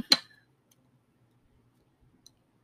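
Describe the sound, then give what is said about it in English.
A single bright clink of glasses touching in a toast, sharp with a short ringing tail, followed by near silence and one faint tick near the end. “Cheers. Cheers.”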